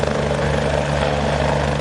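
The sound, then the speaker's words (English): A helicopter roars steadily overhead, its rotor chop forming a dense, continuous drone with low throbbing hum, loud, no voices; a rescue helicopter airlifting a pregnant woman from floodwaters to Nepean Hospital. “A chopper was brought in to assist for another emergency, a pregnant woman airlifted from the floodwaters to the Nepean Hospital.”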